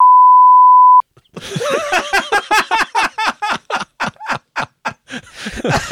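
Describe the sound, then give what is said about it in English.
A loud, steady censor bleep tone, covering the punchline of a dirty joke, lasts about a second, then cuts off into a run of rhythmic, breathy bursts that sound like hearty laughter. “I don't think that can go out either. No, I'll bleep that one too.”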